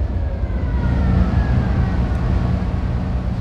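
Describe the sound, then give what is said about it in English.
A warning siren wails steadily as the Casco Bay Bridge opens, its tone rising and falling slightly over a constant low rumble of engines and water, with no voices. “A wailing siren sounds as the Casco Bay Bridge opens.”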